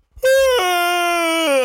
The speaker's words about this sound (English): Are you trying to make us yawn? Is this the fact that a yawn is contagious? What am I doing right now? Yeah, you're yawning. And stretching. I'm pandiculating.